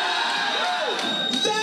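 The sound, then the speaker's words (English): A loud, dense crowd at the Grindhouse wrestling show roars, cheers and screams continuously, with overlapping shouts and whoops forming a steady wall of noise throughout. “I've heard you guys stand and scream and yell and make a difference. Are we ready?”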